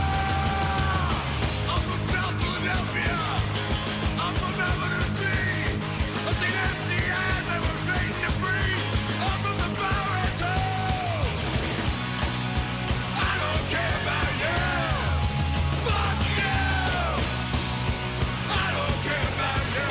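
A loud rock song plays throughout, with a male singer screaming in a put-on deep, gravelly register over dense, driving guitars and drums.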